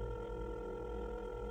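A wall-mounted kitchen telephone rings on an outgoing call to a daughter, a steady buzzing ring tone with dense harmonics that holds for the whole moment, fairly loud, with no voices.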